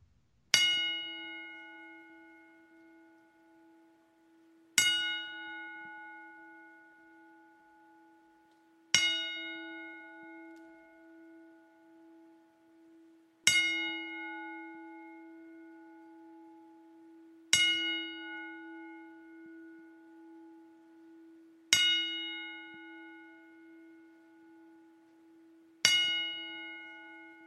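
A single bell is struck slowly and deliberately as a ten-bell salute for Jerome New Jack Young, seven ringing tolls spaced about four seconds apart, each clang fading into a long sustained hum before the next. No voices.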